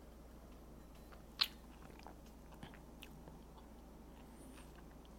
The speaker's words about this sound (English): So let's take a little sip.